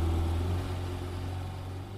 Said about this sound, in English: I'm just going to let the engine play out at the end of this episode.